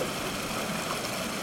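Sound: flowing stream water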